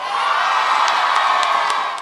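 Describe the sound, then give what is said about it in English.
A large crowd of young people from the Cass Tech graduating class screams and cheers continuously, a loud, dense wall of voices with occasional higher shrieks and whoops cutting through over about two seconds. “Cass Tech, Cass Tech. Number one. Let me hear you scream.”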